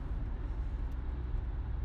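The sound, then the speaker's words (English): Steady, low rumble of a car moving through slow Friday late-morning traffic in Utah, a continuous engine and road drone heard from inside the vehicle, with no talking and no sharp events. “Now we're hitting a slowdown.”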